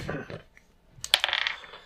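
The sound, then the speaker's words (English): A short murmur of voice, then dice are rolled for initiative in a game, with a bright burst of sharp clicks and a quick rattling clatter lasting about half a second before settling. “Wait, you said initiative? Yes. Mm-hmm. Your dice is giving me great fortune.”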